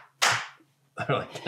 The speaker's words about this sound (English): I thought I was clapping before we got anywhere.